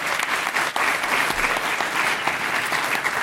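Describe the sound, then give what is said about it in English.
A steady round of applause from a crowd, dense rapid clapping that stays loud and even for a few seconds with no voices standing out. “Round of applause.”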